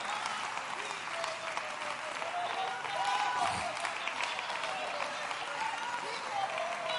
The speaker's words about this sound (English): Come on, stand to your feet and clap your hands and praise him. Hallelujah, hallelujah, hallelujah, hallelujah.